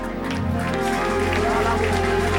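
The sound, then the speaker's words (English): An audience claps steadily and loudly in rhythm, the quick hand claps blending into a dense wash with sustained musical tones and voices underneath. “Listen, you are not clapping unto me.”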